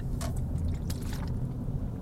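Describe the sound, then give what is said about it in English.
A quiet sip of water followed by a couple of soft wet gulps, brief liquid clicks over a low steady background hum, with no talking. “Let me just have a drink of water.”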